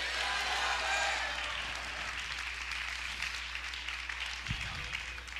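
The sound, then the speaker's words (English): A church audience claps steadily to the Lord, a dense, continuous wash of many hands that is loudest at the start and stays sustained throughout, with faint voices mixed into the crowd noise. “Come on, clap your hands unto the Lord and shout, "It's not over."”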